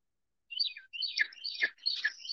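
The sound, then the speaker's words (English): Pet birds chirp and twitter in quick, high-pitched bursts for about two seconds, moderately loud, with no talking over them. “My birds are making an appearance.”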